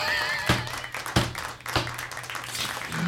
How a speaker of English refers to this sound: Woohoo! There's a little round of applause for drugs.